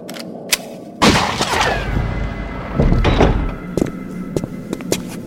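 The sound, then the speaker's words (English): A manual door lock being wrenched out of a locked door: a sharp metallic bang, grinding and scraping, a second heavy clunk, then scattered small clicks and rattles, fairly loud with no talking. “Well, at least they had the good sense to use a manual door lock. What's so great about that? Easy removal.”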